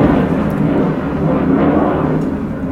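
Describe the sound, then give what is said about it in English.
A fighter jet roars overhead, a loud, steady, deep rumbling roar with a harsh hiss on top that holds throughout without fading. No one speaks. “That is a modern fighter jet, Eurofighter or something.”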